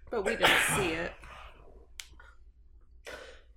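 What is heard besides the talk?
sneeze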